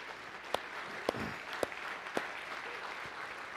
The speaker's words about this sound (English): So I just want to thank her. And even though she's not here, can we just clap for her?